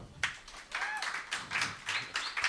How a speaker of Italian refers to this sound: Un applauso.